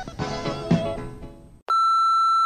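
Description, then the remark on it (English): A trailing bit of voice or music fades out, then a loud, steady electronic answering-machine beep sounds alone and holds for about a second, as if signaling to start recording. “talk to this machine, leave a message that you mean.”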